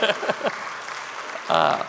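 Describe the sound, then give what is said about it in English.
A burst of audience applause during a church sermon, a steady wash of clapping heard under a man's speaking voice, with his talking at the start and again near the end. “Yeah, we can applaud for that.”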